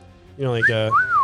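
A person imitates a shrill, ear-piercing whistle like a referee's: a short, buzzy voiced call followed by a clear, rising-then-falling whistled tone, fairly loud, lasting about a second.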